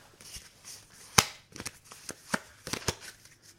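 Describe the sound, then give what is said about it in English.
An already shuffled deck of 36 playing cards is cut several times at a table, making a string of crisp, papery slaps and soft rustles, with one sharp, louder snap early on. No one speaks. “And I've already shuffled them, but I'm going to cut them several times now.”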